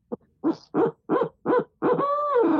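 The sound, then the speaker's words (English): An owl hooter call mimicking an owl: a quick short note, then four evenly spaced, loud hoots, ending in a longer drawn-out hoot, with no talking. “That's my owl hooter. Wow, you can do it with an owl hooter too, huh?”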